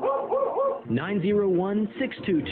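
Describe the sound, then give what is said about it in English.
A dog in a home too hot because the AC is out barks and yips: three quick bouncy yaps, then a long, wavering, whine-like bark that rises and falls, followed by a couple of shorter yelps. “I'm the only one who understands dog language.”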